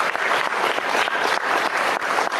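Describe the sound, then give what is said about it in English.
Dense, vigorous applause from a sizable crowd at an announcement of Canadian handgun legislation, steady and loud throughout with a continuous crackle of many hands clapping at once and no voices standing out. “Good vigorous applause, guys.”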